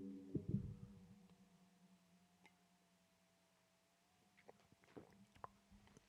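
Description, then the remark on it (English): Someone takes a quiet sip of coffee, with a soft thump at the start, then small slurping and swallowing clicks near the end over a faint steady hum; no one talks. “I'm going to take a sip of my coffee right here, and you can take a sip of whatever you got in front of you.”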